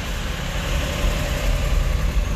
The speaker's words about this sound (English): sorry, motorcycle pass by